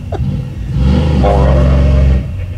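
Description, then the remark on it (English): A truck fitted with a stainless steel exhaust system idles with a deep rumble, then revs up loud, holding a throaty exhaust roar for about a second and a half before dropping back down. “Putting the exhaust system on that truck, all the stainless steel.”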